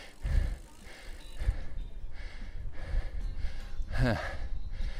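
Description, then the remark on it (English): Heavy, labored breathing of a cyclist after riding up a hill on a hot day, with repeated breathy gasps and exhales in a steady rhythm, some sharper and louder, over a low rumbling background. “And I'm out of breath too, as you can hear.”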